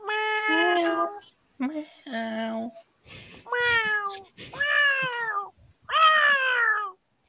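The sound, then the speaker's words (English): A cat meows five times in a row, each call drawn out and rising then falling in pitch, loud, with brief pauses between them and no other sounds. “Meow.”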